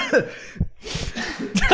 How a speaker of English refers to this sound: He's having a coughing fit.